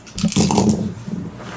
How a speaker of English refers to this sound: Roll that dice pool. He's like, oh, God. How many dice is it?